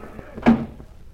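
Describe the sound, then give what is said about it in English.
A single muffled thump of the front door of a big brownstone gambling house as a patrolman lets people in from the rain, fairly loud, rising out of a low background hum and fading quickly. No voices. “The patrolman on the door let us in.”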